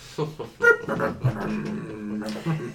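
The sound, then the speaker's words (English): A human voice imitates a dog, making a quick run of high, wavering whimpers and short yips, fairly loud, with no actual words. “Stupid dogs. I see you out there. Woofing around with the beads.”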